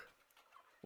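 A crowd of chickens gathered together cluck excitedly in a faint, busy murmur, then one louder, lower cluck bursts out right at the end.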